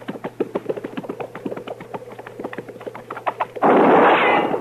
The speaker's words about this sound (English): seems like that shot came from back there.